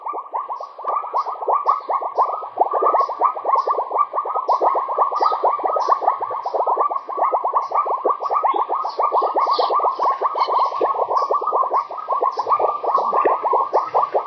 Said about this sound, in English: And on the way, I heard a very strange popping noise. And I sent you a recording of this, and I will cut it into the show, because I have never heard that sort of noise coming from frogs.